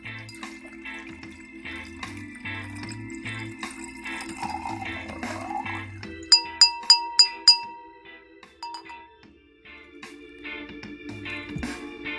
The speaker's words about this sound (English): This wine is from California, and according to the label in the front, say that the alcohol percentage is 13.5% per volume. So let me pour some in my glass.